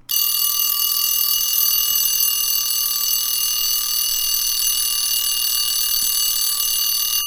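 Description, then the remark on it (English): An alarm clock goes off early in the morning, ringing loudly and without a break for several seconds: a bright, steady, high-pitched electronic tone that starts abruptly and holds constant, with no voices. “So your alarm has gone off, it's early in the morning.”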